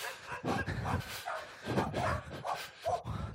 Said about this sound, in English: Hey up. All right, midnight barking.